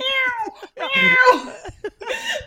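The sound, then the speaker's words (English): A person imitates a cat with a series of drawn-out, wavering meows, three or four close, loud calls with short gaps between them, produced by a human voice. “I sound like a cat.”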